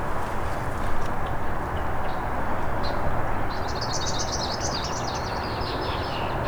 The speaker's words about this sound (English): A lot of red-winged blackbirds here too. Hopefully they don't drown it out too much.